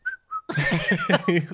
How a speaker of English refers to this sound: Like an 800-pound animal is coming at me. Maybe I'll whistle at it.